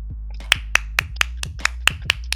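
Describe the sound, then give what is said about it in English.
A short burst of applause for NBA commissioner Adam Silver: about nine sharp, crisp hand claps in a steady, fairly quick rhythm, sparse rather than a full crowd, with no talking over them. “Can we, before anybody answers this, just give a round of applause?”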